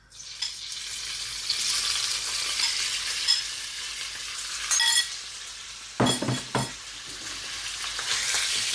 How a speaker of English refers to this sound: So my oil is nice and hot and shimmering. This pan gets hot really quickly. So I'm going to pop my chicken into the pan. You should hear a nice sizzle.